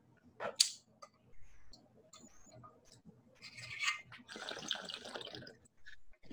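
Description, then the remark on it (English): Quiet water bubbling in a bong as someone draws on it to take a hit of weed: a short sharp burst, then a few seconds of steady gurgling, with no talking. “God damn, my bong sucks so bad.”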